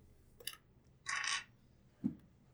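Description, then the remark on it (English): A six-sided die (d6) is rolled: a sharp tick, then a brief hissing rattle as it tumbles, and a soft low knock as it settles, landing on six. No one speaks. “Okay, roll me a d6.”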